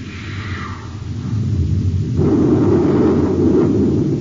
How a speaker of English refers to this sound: Fire a space torpedo close to his port side, Hap. Let him know we mean business, too.